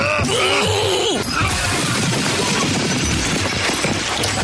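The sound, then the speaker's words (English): A strained, groaning voice gives way to a loud crash of a plate glass booth shattering as a person is thrown through it, followed by a dense spill of tinkling, crackling shards that continues to the end. “I love the sound of breaking glass in the morning.”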